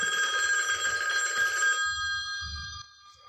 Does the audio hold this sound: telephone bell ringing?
yes